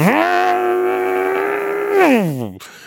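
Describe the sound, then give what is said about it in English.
A voice imitates the wheels of a rear-wheel-drive BMW spinning in snow on an uphill driveway: a loud, steady, high-pitched whine held for about two seconds, then sliding down in pitch and cutting off. “He's got a BMW with back wheel drive, you know, and the thing has absolutely no snow sense whatsoever.”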